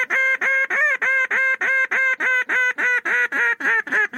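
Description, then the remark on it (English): A duck call, a manufactured game call, blown as a highball from a blind to get the attention of ducks about 400 to 500 yards away: a long, loud run of about fourteen harsh, nasal, screaming quacks in a steady, rapid rhythm, pitch dropping slightly toward the end, with no voices. “If you were in a blind and you saw some ducks and they were a fairly good distance away, say, you know, 400 or 500 yards away, you would use a long, loud, screaming call, which is usually called a highball.”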